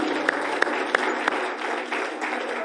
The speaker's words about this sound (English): Come on, give the Lord a hand clap of praise.